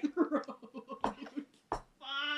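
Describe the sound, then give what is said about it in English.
A couple of sharp coughs break up a stretch of voiced, babbly vocalizing, ending in a sustained throaty vocal sound, as if someone is clearing their throat. “Do you need to clear your throat?”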